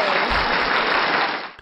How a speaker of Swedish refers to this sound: Idag lanseras hemsidan! Woho! Applåder!